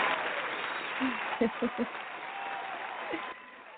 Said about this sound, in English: So we're going to give them an applause that they will continue to support you and all your music projects.